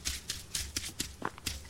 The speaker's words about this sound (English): As you can hear, your footsteps change as you cruise. There's water, mud, hard-packed dirt, grass.